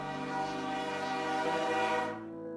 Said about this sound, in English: And as you walk out, you can hear a loud and distinct whistle of a steam train.